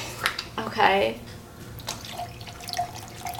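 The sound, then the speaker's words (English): Thick, pulpy liquid with chunks pours and splashes into a container in short uneven gushes, moderately loud, with faint voices murmuring in the background. “There's like chunks of stuff. There's pulp. All right, so mix it up a little bit and then we'll pour it in.”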